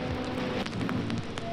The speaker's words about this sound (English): And you can, if you really like bear down on your headphones, you can hear the deep textured crackles of the record and just like that very soothing loop that just does not end and keeps throughout the entirety of this track.